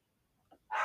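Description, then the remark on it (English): One of the speaker's dogs barks, a brief soft yelp followed by one loud, sharp bark that cuts off abruptly, with no talking around it. “Like, yeah, there's one of my dogs.”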